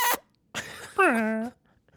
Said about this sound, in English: I don't know why the dog made that noise. Maybe the dog got traumatized, too.